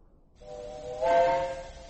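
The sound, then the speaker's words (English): A steam locomotive whistle sounds one long, steady chord over a breathy hiss as steam is being got up on the engine, swelling louder partway through and holding to the end. No one speaks. “They're getting up steam on the engine.”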